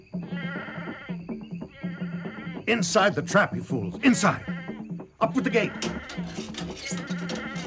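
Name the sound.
goat bleating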